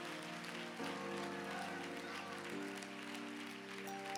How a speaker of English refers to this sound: Hallelujah. Hallelujah. Clap your hands one last time. Give him praise.